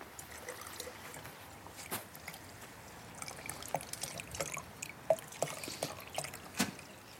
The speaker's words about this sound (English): And I'm going to add the water to my tahini.